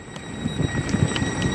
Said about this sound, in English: I'm at the Tallinn Baltic Station, which is the main train station in Tallinn, Estonia.